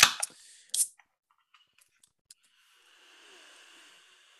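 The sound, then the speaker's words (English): A beer can is cracked open: a sharp metallic click and a short hissing burst, a few small ticks, then a soft, steady fizz of carbonation trailing off. No one speaks. “Not that it does, but dare I even say the nose on this as you open the can almost has a bit of an edge of barrel agedness to it.”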